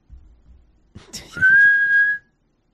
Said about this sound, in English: A whistle, and I'm very upset about it. Have we talked about this before? How much it upsets me? Yeah, it upsets me too. Don't whistle.